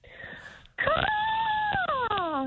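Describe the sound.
A person voices a loud, drawn-out screech imitating a hawk's cry, gliding slowly downward in pitch for over a second, preceded by a softer, higher vocal tone.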